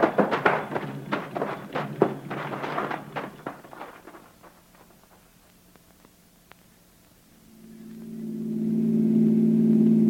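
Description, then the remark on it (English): A car pulled over and stopped with its lights off and its engine kept running: the engine rumbles up from quiet and swells to a steady, loud drone near the end, after a burst of quick clattering taps and a stretch of near silence. “Pull over and stop, then. Douse your lights. Keep it running.”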